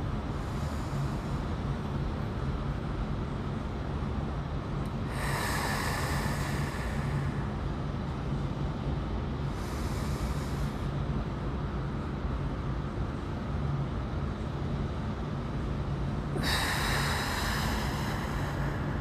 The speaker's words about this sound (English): And I'm outside, so once I close my eyes, I don't know what's happening. Just breathing and centering.